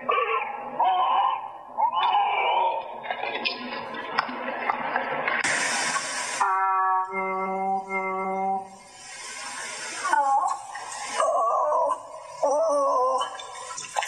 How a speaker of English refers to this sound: These seals are trying so hard in these clips. They're gorgeous. And they kind of mimic the tune, and then they're like, yep, I'm done, and head back in the water.